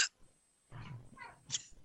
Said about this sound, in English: You've had those hiccups for a while now. I have. Well, she hasn't had time to get rid of them.